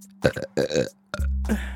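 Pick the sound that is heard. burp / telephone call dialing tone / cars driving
burp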